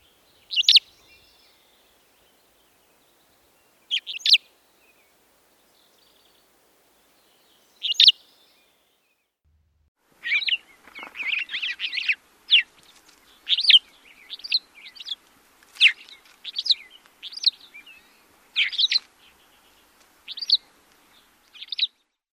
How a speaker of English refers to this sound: Cassin's finch, both males and females, give a distinctive liquid calls with two or three syllables.